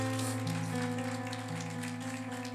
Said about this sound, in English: You are blessed with an honest pastor, a good pastor. I want you to clap your hands for your own pastor.